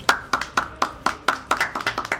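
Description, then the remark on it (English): Hands clap in a steady, brisk rhythm, about four claps a second, growing denser and slightly uneven as more clappers join in, a round of applause for The Walking Dead. The claps are sharp and fairly loud, with no talking. “Hey, round of applause for the Walking Dead.”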